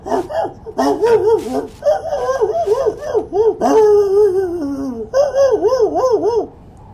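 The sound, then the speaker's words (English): A small dog yips and barks excitedly in a rapid, continuous series of high, warbling cries, fairly loud, with only a brief pause before a final burst. “Hey, little dog dude!”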